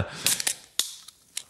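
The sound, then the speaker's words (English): A green can of Steam Whistle, a Canadian pilsner, cracks open: a cluster of sharp metallic snaps and short, bright hissing bursts, followed by a few quieter ticks spaced out over a second and a half. “Let me grab a couple green cans.”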